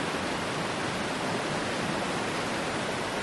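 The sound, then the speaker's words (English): A steady, unbroken rush of flowing water fills the whole recording, dense and even like a stream, with no pauses or voices. “And the sound has been flowing unbroken, continuously, since we exited gradually 12,000 years ago, the Pleistocene, into the Holocene, and now into, that's the interglacial period”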